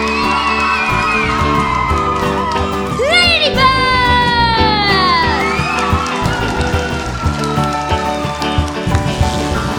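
A large crowd of New York citizens cheers loudly and continuously in a warm welcome, with rising whoops and excited shouts cutting through the steady roar for the whole stretch.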